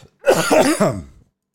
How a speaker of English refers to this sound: I don't know why when this show gets ready to start, my cough just kicks into overdrive. I've been doing okay with it. For some reason, though, when this show gets ready to start, it just freaks out.